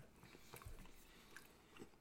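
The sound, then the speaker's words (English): Wet chewing of soft canned bread with poblano butter, a few moist bites and smacks spread over two seconds, with no talking. “Better, it makes it more like I can chew through it now and swallow it.”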